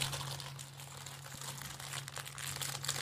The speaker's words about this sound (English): Very crinkly. Well, paper packaging. Quite the experience. It's recyclable.